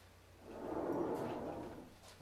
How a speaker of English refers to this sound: Let me get up and shut my door real quick.